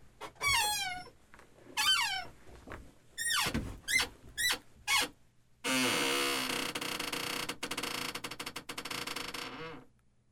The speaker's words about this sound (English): Wait, I was going to do some chair music? Experimental music.